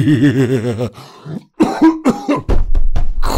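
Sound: cough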